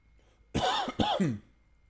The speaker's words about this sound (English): No, that's not coronavirus, folks. I have a bad lung. It's full of scar tissue. I cough all the time.